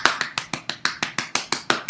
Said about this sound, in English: Self-applause is always very important for your health.